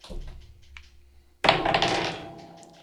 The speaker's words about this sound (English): I rolled a natural 20.